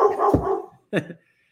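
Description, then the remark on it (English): Two dogs bark excitedly at the doorbell for a package delivery, in two loud bursts: a longer rough volley followed by a short sharp yelp, then quiet. “That's an Amazon delivery that the dogs got fired up over.”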